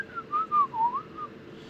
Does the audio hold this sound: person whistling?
yes